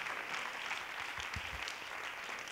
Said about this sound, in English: Can we clap our hands one more time? Hallelujah.